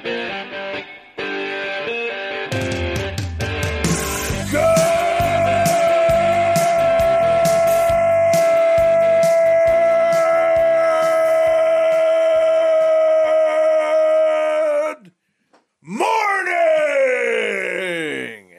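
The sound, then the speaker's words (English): A loud, drawn-out yell held at one steady pitch for roughly ten seconds, preceded by a burst of noisy commotion. After a short gap, a shorter cry slides downward. “That's why I did the especially elongated yell.”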